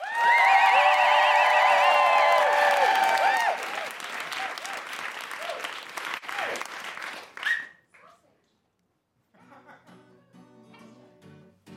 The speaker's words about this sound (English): Please welcome, with your best clapping and woohooing,